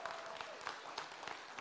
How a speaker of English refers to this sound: Come on, give Dave a round of applause, man.